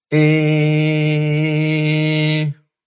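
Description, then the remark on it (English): A voice imitates the second of three different ambulance siren sounds as one flat, buzzy tone held steadily for about two and a half seconds, fairly loud and alone, with no rise or fall in pitch. “Ambulance sound two.”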